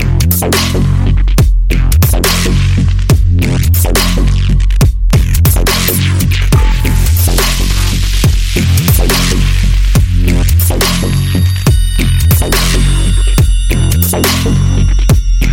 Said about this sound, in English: Yes. Sounds of the dubstep music. Right here on Future Music FM.